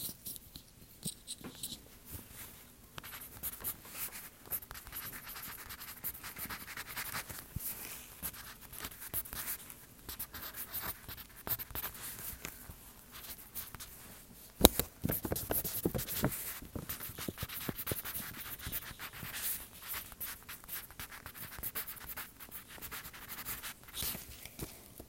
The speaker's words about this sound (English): I'm gonna hear all those pencils.